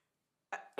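A single sharp sneeze: a brief voiced intake followed by a loud, hissing burst, with silence beforehand and no talking.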